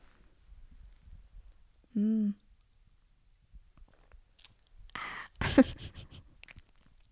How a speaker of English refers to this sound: I need a sip of water.